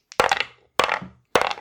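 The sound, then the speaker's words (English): Three separate bursts of clattering dice, each a sharp hard rattle of bouncing clicks that fades within about half a second. The rolls come at a steady pace with no voices. “Let's grab our dice.”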